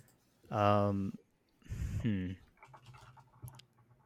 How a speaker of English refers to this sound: I hear typing. No cheating.